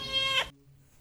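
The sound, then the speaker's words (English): A single loud cat meow in a house, lasting about half a second with a rising then falling pitch, followed by near silence with faint low background hum. “why is there a cat and 2 random dudes in your house?”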